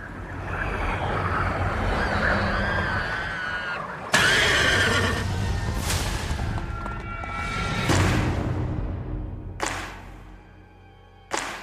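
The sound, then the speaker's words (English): Agitated horses on a ranch in the film Nope, spooked by something out there, neigh and whinny over a rumbling, dramatic backdrop, with sharp bursts and thuds cutting in; the cries sound distressed, and no one speaks. “There's something out there and it's spooking the horses.”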